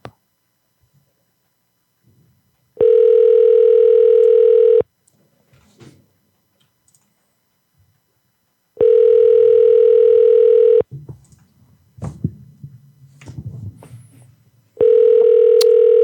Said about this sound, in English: I can't believe I called three Arby's and none of them picked up. That's like always a guaranteed pickup.